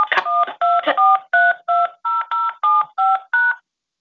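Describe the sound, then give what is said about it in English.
A rapid run of about a dozen telephone keypad tones, each a short clear beep with its own pitch pair, pressed in steady succession with brief gaps between, dialing an access code or phone number into a conference call line. “Access code or phone number you have dialed is incorrect.”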